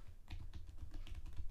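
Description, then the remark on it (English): Rapid, irregular clicks of someone typing on a computer keyboard, fairly clear, with a steady low hum underneath and no voices. “Don't mind my typing.”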